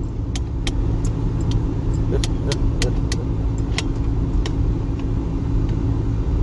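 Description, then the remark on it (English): A car engine rumbles steadily while driving, a dense low drone filling the whole stretch, with scattered sharp ticking rattles over the top. “This is a fucked ass car.”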